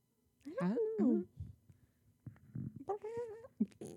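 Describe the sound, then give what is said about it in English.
Fairly loud meowing in two short bursts: a cat meows, and a human voice answers by imitating the meow, with quiet gaps and soft thuds in between. “Sorry, I just meowed back at the cat.”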